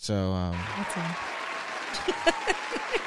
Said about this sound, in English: It's a long clap, too.